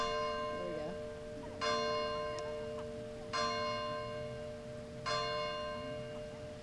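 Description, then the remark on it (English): A church bell in the neighborhood tolls three slow, evenly spaced strikes at 8 a.m., each ringing out with a long, humming decay that overlaps the next, with faint voices murmuring underneath. “Just because it's 8 a.m. if you can hear the church bell.”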